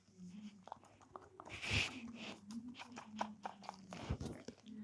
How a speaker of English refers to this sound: I don't know if you could hear that as she nibbled herself. She's cleaning herself like a good dog should